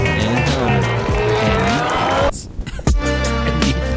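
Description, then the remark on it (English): A voice loudly imitates a race car engine, revving with rising buzzy tones, pausing briefly, then holding a steady droning growl. “It's quite the race car. Tell me what your voice can do for you.”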